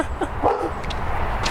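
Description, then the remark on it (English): A dog lets out a quick bark or yip, with a couple of short sharp calls over a low rumbling background. “Oh, damn, that dog scared me.”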